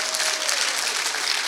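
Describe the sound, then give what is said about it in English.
An audience applauds itself, a dense, steady patter of many hands clapping together at an even loudness throughout, with no voices standing out above it. “Give yourselves a hand clap.”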